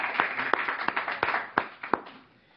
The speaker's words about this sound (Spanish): Y ahora por los adultos bien grandotes como nosotros. Vamos a dar palmas también al Señor por los adultos.